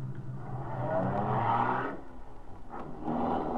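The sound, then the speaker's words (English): A car engine revs up loudly and pulls away, its rumbling growl swelling and shifting pitch before easing briefly and surging again. No one speaks. “Get in this car.”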